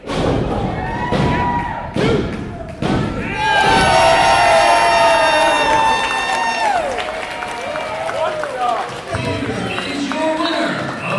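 Heavy thuds on a wrestling mat land in a steady count of about four for the final pinfall of the Nathan Bush Memorial Cup Tournament finals, then a crowd erupts into loud, sustained cheering with high-pitched yells that gradually settles into a noisy murmur.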